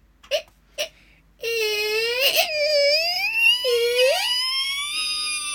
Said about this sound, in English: And just at that moment, she heard the door being cautiously pushed open. Can you hear a door being cautiously pushed open?